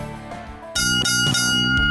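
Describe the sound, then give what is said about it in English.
Three loud, bright bell rings, signalling round three of a show, strike in quick succession, their metallic tones sustaining and overlapping, following a brief, softer tonal lead-in. No one speaks. “Ah, three bells and all is well.”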